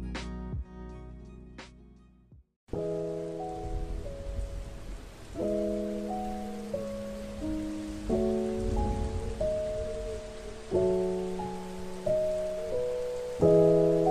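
Steady rain hisses continuously after a brief opening, with gentle sustained musical chords playing over the downpour; no one speaks.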